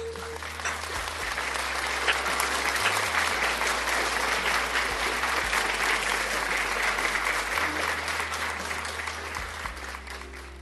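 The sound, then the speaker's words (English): A large group claps steadily and loudly for about ten seconds, a dense sustained wash of applause that stays strong before easing slightly at the end, with some faint voices mixed in, applauding for the Lord Jesus Christ at a prayer service. “Applaud, applaud for the Lord Jesus Christ.”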